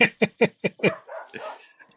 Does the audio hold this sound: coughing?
no